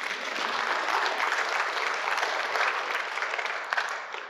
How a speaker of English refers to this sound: Yeah, clap, that's good, yeah.